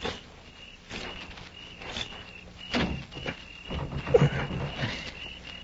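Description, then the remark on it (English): Footsteps approach over a steady hum of night insects, then a door rattles with a few sharp knocks and jolts as someone tries it against its bolt. No one speaks. “I'm going to try the door.”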